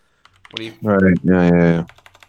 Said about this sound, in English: I'm sorry. My keyboard's really loud. I forget about that.